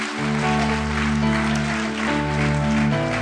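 A large crowd cheers and claps continuously, giving God a shout after a prayer, a dense wash of applause and shouting, with a steady sustained keyboard chord ringing underneath throughout.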